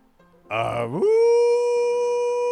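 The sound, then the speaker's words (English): A voice imitates an aooga horn as a game buzzer: a short, buzzy low blast that swoops upward into a long, steady, nasal tone held for over a second. “I'm a man of two buzzes. It's a Aruga or a ding.”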